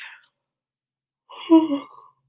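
A single drawn-out, breathy yawn, swelling then trailing off over about a second, preceded by a brief soft breath.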